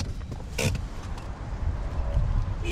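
A car rolls in and settles to a stop at the far end of a full-service filling station complex with hydrogen fuelling on the outskirts of Reykjavik, Iceland, its engine rumbling low, with a sharp mechanical creak partway through and a brief whirring squeal near the end.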